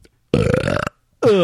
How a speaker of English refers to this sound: We should go back to burping and farting a lot, which we stopped because listeners complained, but it would help this guy's situation.